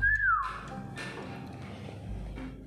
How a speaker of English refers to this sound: George, I'm learning to whistle. You make an own shape with your mouth and... Don't worry, George. It's almost impossible, like wiggling your eyebrows. Whistling is harder.